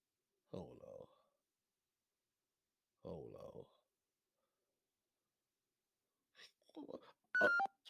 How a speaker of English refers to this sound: I ain't never heard that noise like that on my goddamn phone.